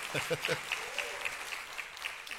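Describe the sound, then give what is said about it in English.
A crowd claps steadily for a couple of seconds for the speaker's wife, a dense patter of many hands at moderate volume, with a bit of voice faintly mixed underneath. “And yeah, you can clap for her.”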